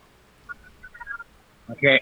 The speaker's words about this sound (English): Oh, you're making a phone call.